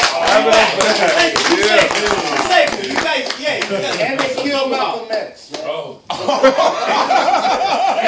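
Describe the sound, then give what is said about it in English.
An audience claps in a dense, steady patter of overlapping hand claps, mixed with cheering voices and some laughter, fading briefly near the end before the crowd noise picks up again. “Clap it up for that.”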